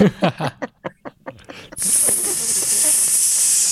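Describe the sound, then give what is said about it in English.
A few quick voiced bursts, like chuckling, give way to a long, steady, loud hiss from a person imitating a snake, sustained for about two seconds. “Did he have really good English, or did he have to act out a snake?”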